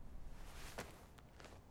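A few soft footsteps crunch along a nature trail as a woman sets off on foot, at an uneven walking pace, three faint scuffs against a quiet outdoor background with no voices.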